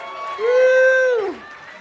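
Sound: audience cheering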